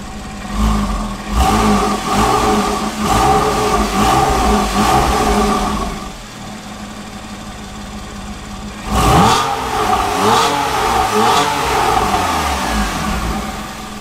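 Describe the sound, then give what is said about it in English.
A Porsche flat-six engine revs loudly through a Soul Performance valved exhaust with the valves closed, in repeated sharp blips, settles to a lower idle, then revs hard again with rising and falling pitch, throaty and gritty, with no talking. “Just the Soul Performance valved exhaust, it just makes the natural sound of the flat six engine just more aggressive, throatier, grittier.”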